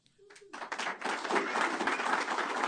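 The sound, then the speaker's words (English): A crowd bursts into applause and cheering after a speech announcing that Texas state mandates are no longer needed, swelling quickly from a quiet start into a loud, dense, sustained roar of clapping. “They cheering like we just freed the slaves.”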